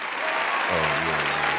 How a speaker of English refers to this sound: Round of applause.